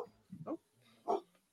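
Two short, rough barks from a dog, a few tenths of a second apart, fairly faint, with a low murmur in the background.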